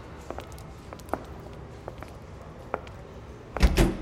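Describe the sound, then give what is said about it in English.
Soft, scattered footsteps and small clicks, then the lobby doors of a pageant venue swing open near the end with a louder, rushing clunk. “Now, go right through those lobby doors there.”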